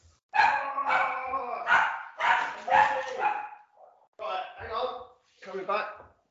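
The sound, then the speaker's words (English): A dog barks in a string of loud, drawn-out, whiny barks, several in quick succession with short pauses between them, while waiting to be let out. “I've got to let my dog out.”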